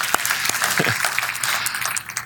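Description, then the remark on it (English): A crowd claps steadily, a dense patter of many hands that holds at an even level for a couple of seconds before thinning slightly at the end. “Now you can clap.”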